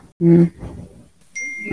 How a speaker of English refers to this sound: Get the cell phone noise in the back. I know. It's on my computer, and I don't know how to stop notifications on my computer.